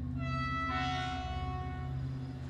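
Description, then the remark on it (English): A train stands at Victoria Station, a steady low rumble under a sustained, whistle-like tonal drone, with a brief breathy hiss swelling partway through. No voices. “Through the turnstile, Alec Yannick departed the train, blending in amongst the families, shoppers and commuters.”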